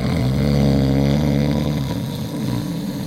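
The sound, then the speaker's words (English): A loud, guttural snore rattles from a man sleeping on a cot in a tent, a deep buzzing drone that holds steady for a few seconds before easing off slightly, with no voices. “James shifted on his cot and began to snore. A guttural, pig-like death rattle clattered around our tent.”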